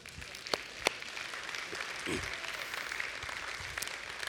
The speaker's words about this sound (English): So for the person next to you that's such a generous giver, could you give them a round of applause?